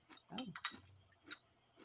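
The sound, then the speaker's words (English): Crunchy chewing of a hard Kix treat, with several sharp crackling bites and grinding in uneven bursts, no talking over it. “It tastes so hard. And like, it doesn't have the same like melting effect the way it used to. I'm literally eating it just to get to the coffee.”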